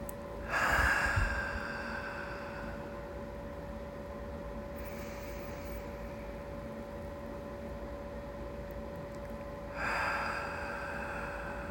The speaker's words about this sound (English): Breathe here. Breathe here into this moment. Exaggerate every breath so you really feel it moving in and out of your body.